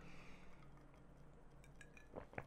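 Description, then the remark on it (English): Glasses clink together in a toast, two quick bright ringing taps close together near the end, heard over a quiet, steady background hum with no talking. “Cheers, my guy.”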